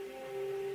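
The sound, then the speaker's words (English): A phone notification sounds as a steady, sustained electronic tone at one mid-low pitch, holding evenly for under a second with no one talking over it. “excuse that's my phone.”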